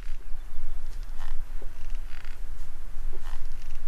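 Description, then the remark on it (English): Beetle larvae in a woods chewing tunnels through wood to reach the sapwood they eat: soft, irregular crunching clicks and brief scraping bursts over a steady low rumble, with no voices. “And if you're really paying attention, you suddenly hear this little chewing sounds.”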